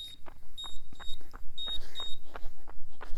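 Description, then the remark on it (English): A high-pitched electronic beep sounds over and over in short bursts, a few per second, fairly loud, with muffled thumps and clatter in the background and no one speaking. “It's like, I don't really like listening to that beeping.”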